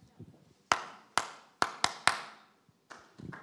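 A short rhythm of hand claps demonstrating the one pattern players must not copy in a clap-back game: five sharp, bright claps in an uneven pattern, a brief pause, then a few softer claps close together, with no voices.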